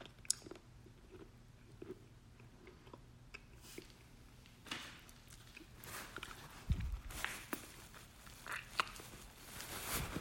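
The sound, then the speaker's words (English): Chewing and crunching of rock-hard stale trading-card gum, a steady run of dry, brittle bites and grinding that grows louder and denser toward the end, with no talking. “Basically, the gum itself was hard, and so I had to spit the gum out because once I chewed the gum, gum wasn't really chewable. It just turned into fucking powder.”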